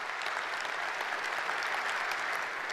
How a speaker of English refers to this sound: Now you can clap for that. That deserves.